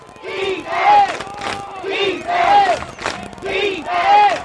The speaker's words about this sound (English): Good defense there by the Wayne Blue Devils. Across midfield here are the Patriots. And you're hearing the chants of defense here from the Wayne crowd.